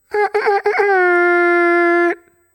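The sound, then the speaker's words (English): A voice imitates an air horn with the mouth: a few quick, loud blasts run straight into one long, steady, buzzy blare that holds for over a second before cutting off sharply. “I would love to, but we do it in a very specific way, and you get to give me a good mouth air horn, a pow, pow, pow, pow, and you got to throw in a Get Motherfucking Familiar.”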